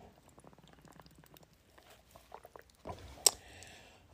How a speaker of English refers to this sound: Hold on, I'm going to have a sip of coconut water because that's what we're drinking tonight.